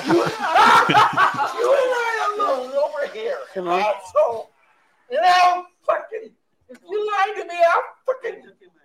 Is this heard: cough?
no